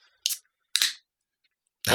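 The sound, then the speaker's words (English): A can of Incantation IPA from Four Hands Brewing cracks open with a sharp metallic snap and short hissing bursts, followed by a louder rush of fizzing foam spraying out at the end, with no one speaking. “Oh, I got some splash. Drink it, don't spray it.”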